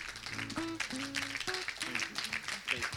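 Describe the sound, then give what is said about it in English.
Crowd applause from a New Zealand (Kiwi) audience, a steady wash of many hands clapping, with voices calling out and talking over it throughout. “Kiwis applauding.”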